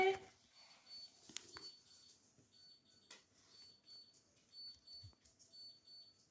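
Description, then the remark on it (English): Faint, high electronic beeps repeat at intervals against a quiet background, thin tones that come and go. “Why was there a beeping noise?”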